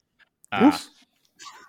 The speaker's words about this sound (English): I thought it was funny that JJ's dog is barking in the background.